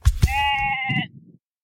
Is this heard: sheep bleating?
yes